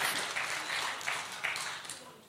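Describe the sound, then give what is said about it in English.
An audience applauds, a dense, steady wash of many hands clapping that holds at an even, moderate level for a couple of seconds, with no voices over it. “So give yourself a round of applause, everybody.”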